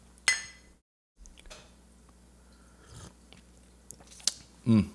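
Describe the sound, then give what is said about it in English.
A quiet sip of hot French press coffee with a soft slurp, surrounded by light clinks of a mug and small mouth noises; no one speaks. “Alright, first sip.”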